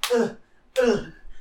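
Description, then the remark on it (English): Two sharp slaps to a person's face land about three quarters of a second apart, each a loud, crisp smack that rings briefly before fading, given to snap the person out of a trance. “Oh, slap me out of this,”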